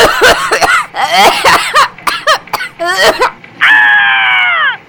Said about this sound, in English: She coughed all over me.